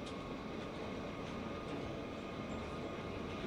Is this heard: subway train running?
yes